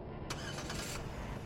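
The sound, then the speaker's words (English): A police car engine rumbles steadily, with a brief brighter whirring surge early on as it catches and settles into running. No voices are heard. “I was in the back of a police car before I could muster up anything to say to the officers.”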